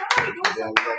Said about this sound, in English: Now give yourselves a round of applause.